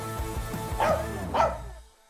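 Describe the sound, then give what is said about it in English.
A dog barks twice, about half a second apart, clear, over a steady low musical bed that fades out at the end. “They even earned enough money to move into their own house and adopt a dog.”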